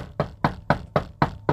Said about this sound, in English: Do you hear that? You are the opportunity that's knocking.